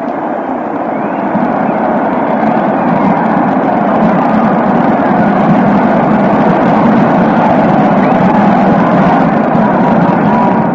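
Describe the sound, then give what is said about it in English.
A huge baseball stadium crowd roars steadily and loudly for about ten seconds after a single ties the game at 2-2, a dense, unbroken wall of cheering and shouting with no pauses or distinct voices standing out. “Listen to this crowd for a second, and we'll get back to the details.”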